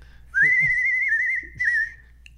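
A clear whistle holds one steady pitch for about a second and a half, wavering slightly before fading, with a few soft low thumps underneath and no talking.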